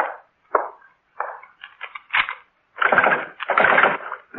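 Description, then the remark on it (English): A back door being locked: a string of wooden clunks and rattles, building into louder scraping bursts of the latch and bolt at the end. Nobody speaks. “Well, first the back door.”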